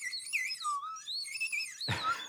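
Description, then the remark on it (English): A percussion whistle imitating a small bird: a high, warbling whistle chirps and trills, its pitch wavering up and down continuously for about two seconds before a brief rough burst of noise near the end. “Where's that whistle?”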